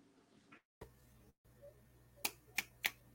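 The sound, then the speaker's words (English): Four crisp finger snaps, sharp and bright, land in a loose rhythm over a low steady hum, after a brief quiet stretch with a couple of dropouts; the snapping is in appreciation of a poem just read. “I don't know if I'm supposed to clap or snap because I never get that right because it's a poem, but hell yeah, yo, I like that.”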